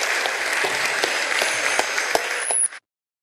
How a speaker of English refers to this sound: Give everybody a round of applause there, folks.